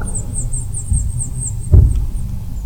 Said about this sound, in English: There are the house finches that have taken up residency over top of the Voice Hustle Studios that I give you an update on every week. Far as I know, they're okay. Haven't heard a lot out of them, but I'm 100% positive there are chicks now